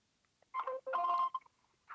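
An electronic telephone ring sounds in short tonal bursts, two longer pulses followed by a brief chirp and the start of another, fairly clear with no voices, as an outgoing phone call rings.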